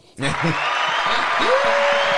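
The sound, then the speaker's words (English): A canned applause effect, triggered by an applause button, kicks in abruptly and holds steady, a dense wash of clapping with cheering voices and a rising whistle mixed in, fairly loud. “Where's my applause button?”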